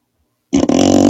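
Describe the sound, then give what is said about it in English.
A fart sound effect blasts in abruptly after a moment of silence, a loud, sustained low buzzing rasp with a brief stutter near the start, then a steady sputtering drone. “These farts aren't good enough.”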